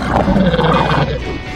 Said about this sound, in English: Maybe some sounds, like a laser gun. There's some monkeys. Or some aliens.